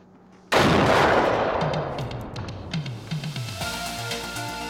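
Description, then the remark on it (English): In a video game, a sudden, loud explosive blast erupts and rumbles on, followed by a rapid series of thudding artillery-like bursts that gradually fade into a lingering, ringing tail. No one speaks. “A massive explosion?”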